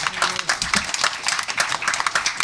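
A crowd claps steadily in a dense, continuous burst of applause, many hands overlapping at moderate loudness, with a brief low murmur of voices near the start.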